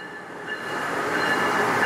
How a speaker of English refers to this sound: Every morning we used to go to South Station and we used to take the commuter rail. I think it was like an hour-long commute. And then from there, from the Mansfield train station, we would walk like 15 minutes or so.